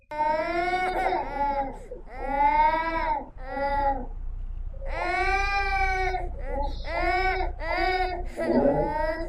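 A baby whines and cries in repeated bursts in a video being played, each wail rising and falling in a strained, high pitch, with short catches of breath between them and no adult voice over it.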